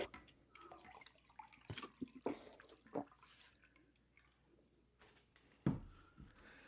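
Water is poured into a glass, an uneven run of splashes and drips with a few sharp clinks and a louder slosh near the end, no one speaking.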